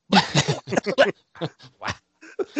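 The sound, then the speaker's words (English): A dog retches and heaves trying to vomit, a quick run of harsh, gagging bursts followed by a few spaced-out hacking spasms, with short pauses between them and no voices. “So are the dogs are as well. If you hear them. It's just like whapping vomit out of.”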